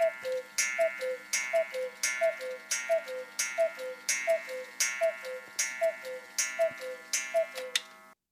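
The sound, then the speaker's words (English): A cuckoo clock ticks in a steady, even rhythm, each beat paired with a short two-note tone that falls in pitch, repeating about a dozen times with no voices. “Where the hell's damn cuckoo?”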